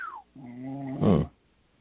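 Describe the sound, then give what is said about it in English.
A short snore: a faint falling whistle, then a steady droning tone that breaks into one loud, rasping snort before going quiet. It sounds isolated, with no talking. “That's about snoring.”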